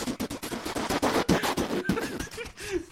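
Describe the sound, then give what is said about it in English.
Someone imitates a helicopter with their mouth during a mock traffic report over the Hume Highway, making a rapid, spitty chopping pulse of rotor-like bursts. Brief whistly tones rise through the end, and the sputtering is loud throughout. “Wow, that's a noisy helicopter, a lot of spittle.”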